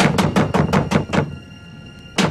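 Rapid, heavy banging on a wooden door in a movie scene, a fugitive outlaw pounding on a farmer's door: six quick thuds in an urgent burst, a brief pause with a faint ringing tone, then one more loud bang.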